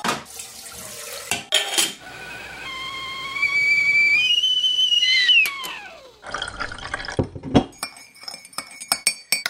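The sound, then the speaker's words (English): A kettle whistles with a rising, multi-toned shriek that slides downward as it cuts off, followed by water pouring and several bright clinks of cups and crockery as tea is made for a tea break. “I think we should have a tea break, a refresh, because we've talked a lot.”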